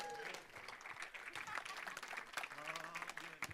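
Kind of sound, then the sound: crowd, audience applauding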